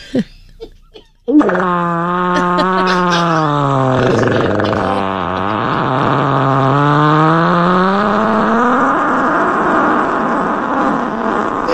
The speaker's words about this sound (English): Another sound we don't like. Farting.